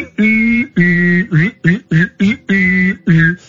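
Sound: whistling and humming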